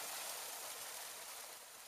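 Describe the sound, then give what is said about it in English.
Hundreds of litres of warm water containing magnesium-rich Epsom salts gush out of a hut as its door is opened, pouring over a man, in a steady, hissing rush that stays constant throughout, with no voices, and eases off slightly near the end. “Hundreds of litres of relaxing warm water containing magnesium-rich Epsom salts poured out over him.”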